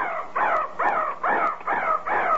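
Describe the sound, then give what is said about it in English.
A mechanical crow on a clock pops out of its crow's nest and caws over and over, six harsh, evenly spaced calls in quick succession as the clock is stuck, loud with no talking. “Because at 3 o'clock, that little crow pops out of the crow's nest and caws 3 times.”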